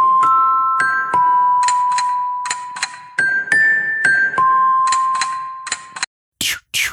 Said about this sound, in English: But when I was in middle school, my alarm and my ringtone was the ringtone in that call, the one that's like... Dun, dun, bum, bum, choo, choo.